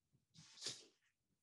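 A single sharp sneeze bursts out, a breathy hiss peaking suddenly then fading, with quiet low rustling before and after.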